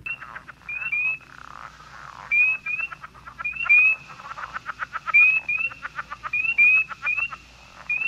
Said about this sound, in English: So before the break, or during the break, actually, we played the frog sound.